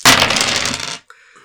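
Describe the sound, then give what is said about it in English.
A loud second of six-sided dice rattling and clattering together as they are shaken and rolled in a tabletop game, followed by a brief pause and a lighter, ringing tumble as they settle. No voices. “Can you use some more d6s? I will need 2.”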